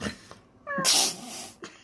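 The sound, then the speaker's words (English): A person imitates a cat's meow, a short rising harmonic call that breaks into a loud, breathy, hissing screech before trailing off, fairly loud with no other talk. “I made the kitty cat call.”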